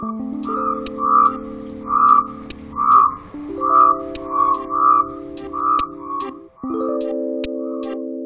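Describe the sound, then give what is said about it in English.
A black rain frog, a burrowing species, gives a series of short, squeaky chirps, repeating roughly once a second over a steady backdrop of sustained musical tones. “Its call is a short little chirp.”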